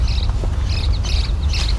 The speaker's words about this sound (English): American goldfinch going over.